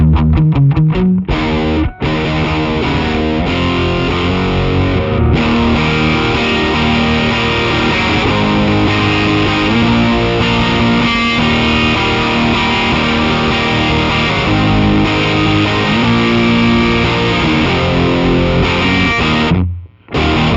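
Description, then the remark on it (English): A heavily distorted electric guitar played through a Riot distortion pedal plays loud, thick chords and riffs with sustained, saturated tone, starting with a few choppy stabs before ringing out continuously, with no voices present. “Let's do the order that we did it in, I guess. So, just distortion. Here's the riot.”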